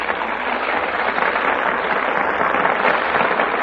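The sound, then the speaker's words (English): A studio audience at the Gulf Theater applauds the stars as they take their places before the Gulf microphone, a steady, dense wash of clapping that holds at an even, fairly loud level for several seconds, with no voices rising above it. “That applause is for our stars who have just taken their places before the Gulf microphone.”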